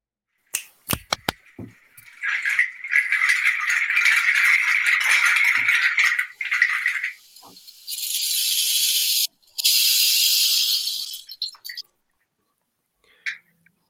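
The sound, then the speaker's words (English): A display of shells is knocked over: a few sharp clacks give way to a long, dense rattling clatter of shells tumbling and spilling, followed by two bursts of bright hissing rustle and a last faint click, with no voices. “I've just knocked over the display of shells.”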